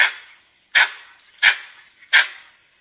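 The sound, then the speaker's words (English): A langur monkey gives a sharp, bark-like alarm call, four harsh screeching barks spaced evenly about a second apart, loud, with no talking. “if you guys want to hear a langur call, this is an example of like a more of an alarm call.”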